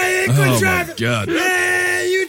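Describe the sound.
A person loudly imitates screaming: a few drawn-out, wavering vocal cries with sliding pitch, with no words spoken.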